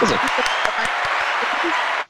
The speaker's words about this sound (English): How do I win? You win that applause.